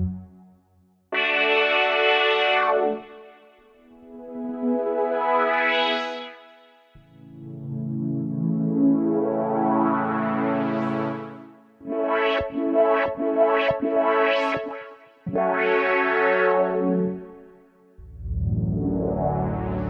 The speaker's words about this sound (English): But yeah, here's Analog Dreams. I forget what preset I have. Sorry, I actually forget. But I'm using with my, I got a new Contact keyboard, and I'm using the mod wheel to kind of make it swell up. Like, whoosh, you hear it right here. Here it is.